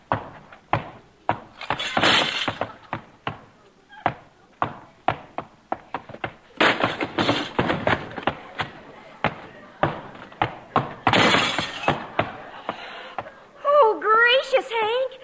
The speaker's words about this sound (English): In the end table, you broke the legs off the sofa and stuck your foot through the front window.